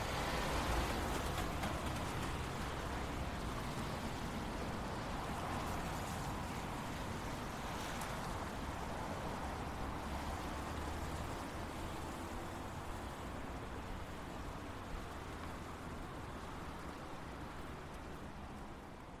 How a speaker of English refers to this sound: So we've just paused briefly in this garden. We're looking over a pond back up at the Imperial Diet and the Prudential Tower beyond that. But the traffic still isn't that far away.